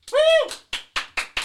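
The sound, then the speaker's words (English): A short whooping cheer followed by five sharp, evenly spaced handclaps as an audience votes by clapping for a debater on whether teachers should assign homework, the claps loud and crisp with brief gaps of silence between them. “there's definitely at least more claps”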